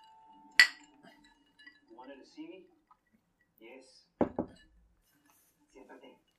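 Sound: glasses clinking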